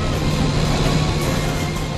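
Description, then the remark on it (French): A car engine, pushed to its maximum during a pursuit, roars steadily at high revs, a loud, continuous drone with a dense rushing noise layered over a low hum, unbroken throughout. “Il faut aller plus vite. Impossible. La voiture donne son maximum.”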